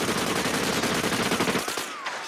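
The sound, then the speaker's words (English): Rapid, continuous gunfire from assault rifles as every person in an audience guns down Duke, crackling in a dense, loud barrage of overlapping shots for about a second and a half, then cutting off abruptly into a faint fading tail. No one speaks. “Duke says he wants to ban assault rifles and almost like gets gunned down by every single person in the audience, you know, for his troubles.”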